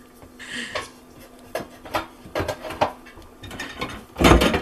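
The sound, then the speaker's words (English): Dishes clatter and scrape as a mixing bowl is pulled out for handling oatmeal, a string of irregular knocks and rubs ending in a louder clanging crash near the end. “Is get out a mixing bowl.”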